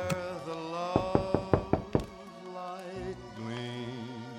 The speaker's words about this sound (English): Oh, hold on. Somebody's knocking again. Let me see who it is.